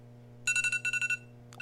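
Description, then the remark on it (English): A phone alert tone: a quick run of bright, evenly pulsed electronic beeps in two short bursts, then a brief extra chirp, heard clearly over a low steady hum. “was that your phone? Yeah, I just got an alert.”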